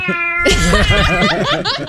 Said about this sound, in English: Have you ever heard felines going at it? My goodness, that tomcat is really into it.